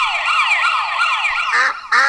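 A wailing police siren sweeps up and down loudly, then two harsh, honking duck-like quacks burst in near the end, blending with the siren's tone.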